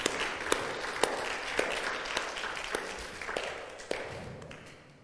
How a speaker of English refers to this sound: Maybe we should give them a clap for taking them.